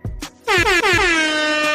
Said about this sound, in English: I don't know how much of the Living Corporate podcast you listen to, but every now and then we got to drop some air horns. Okay. So I got to put them in here right here.